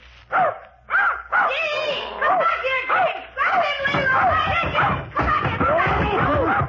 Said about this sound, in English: Don't be frightened, Mr. Magruder. Just my nephew's puppy.